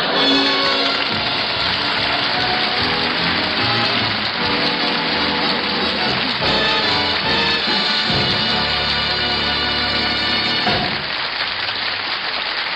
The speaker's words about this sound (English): If you'll forgive me, Mr. Boynton, I'm going to pour 3 glasses of water. 3? But who are the extra 2 for? You and me.